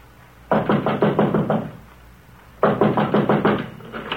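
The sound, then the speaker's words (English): Two loud bursts of rapid knocking on the locked wooden door of Mr. Ackroyd's study, each about six or seven raps, separated by a second-long pause; no voices. “Door's locked.”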